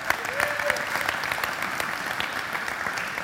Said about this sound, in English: You all are doing an amazing job this year. You can clap. Come on.